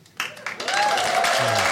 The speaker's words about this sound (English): Please, please, don't clap. Don't clap.